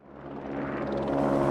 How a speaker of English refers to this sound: is that a helicopter outside the apartment?